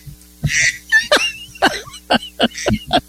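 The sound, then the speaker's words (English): A duck squeaking: about seven short, shrill squeaks with bending pitch come in an uneven run, fairly loud, with no talking over them. “Now my hear a duck squeaking.”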